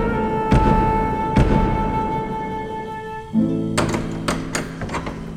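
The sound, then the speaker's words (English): Two heavy, well-spaced knocks on a wooden castle door thud over sustained background music, which then shifts to a brighter tune with light percussive accents. “She took a deep breath and knocked at the castle door.”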